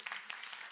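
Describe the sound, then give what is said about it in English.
A short burst of audience applause for the speaker's wife, many hands clapping together in a dense, steady patter that fills the moment without any voices. “Just a big clap.”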